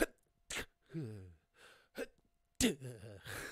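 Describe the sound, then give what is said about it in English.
A voice mimics a held-in sneeze: strained, squeaky vocal buildups broken by a few short, sharp, muffled bursts of breath, moderately loud. “Apparently that's really bad for your brain, like holding a sneeze in your face, which makes a lot of sense, because like as you sneeze, I think you sneeze at the same speed as a bullet”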